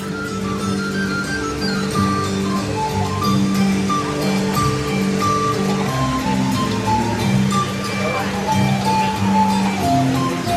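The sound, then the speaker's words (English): A tin whistle (a little fife) plays a slow melody of sustained, high notes that step between pitches, over a steady rushing wash of water-like noise and murmuring voices, in a spot with stumps and tables to sit on. “Little known fact, that's me playing a little fife. A tin whistle, if you will.”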